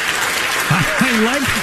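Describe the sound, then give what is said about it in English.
The studio audience of Bill Maher's show applauds in a steady, dense wash of clapping that fills the whole moment, while a voice speaks briefly over the noise partway through. “Yeah, I guess we're supposed to clap here because we don't actually agree with you.”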